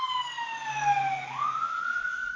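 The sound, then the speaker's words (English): A wailing emergency siren sweeps down and then rises again, with traffic rumble beneath, as an emergency vehicle passes along a main road outside an office. “you can hear the sirens going past there, that'll be why.”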